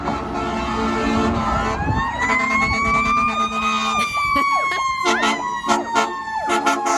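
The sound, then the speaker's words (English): A fire truck siren wails, climbing in a long rising sweep, then switches to quick, choppy yelps punctuated by blaring horn blasts over a low engine rumble. “We had this fire truck sound sent in by Abby.”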